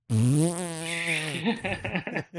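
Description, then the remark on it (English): A voice imitates a fart-like sputter from the tap of a fart keg: a loud, buzzy drawn-out tone with slowly falling pitch, breaking into a quick run of choppy sputtering bursts. “The tap definitely makes like a.”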